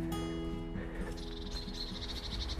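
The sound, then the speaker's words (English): A blackbird sings faintly on a steep hill, a run of short repeated high notes drifting over a steady low outdoor rumble, with no one talking. “There's a blackbird. You hear him?”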